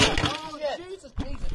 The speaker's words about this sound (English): Hey, sorry there, listener. We had a slight technical difficulty with the microphone falling into a bath of beer. Well, it's beer with ice cubes, but yeah.